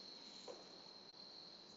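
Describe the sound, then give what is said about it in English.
Crickets chirp in a steady, unbroken high-pitched trill, faint, with a soft background hiss and no voices. “I promise you, if the crickets weren't chirping right now, I would notice it.”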